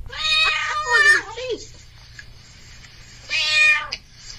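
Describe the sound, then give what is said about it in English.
A cat meows twice: first a long, drawn-out cry that bends downward in pitch at the end, then after a pause a shorter meow. Both are clear over a faint low hum. “Oh my god, it's a cat.”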